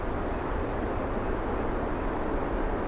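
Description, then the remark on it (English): An unhappy swamp sparrow gives several sharp, high chip calls at irregular intervals, fairly faint, over a steady background rush of wind-like noise. “Looks like I have a unhappy swamp sparrow here. Yep, a swamp sparrow.”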